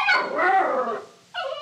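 A dog whimpers in two high, wavering whines: a longer one for about a second with a sliding pitch, then a brief pause and a second, steadier whine. No one speaks.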